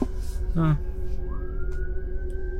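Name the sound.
ambulance siren passing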